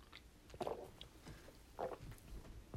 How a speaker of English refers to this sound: hold on, I'm gonna take a little sip of my Alani Nu. That's my caffeine drink of choice this morning.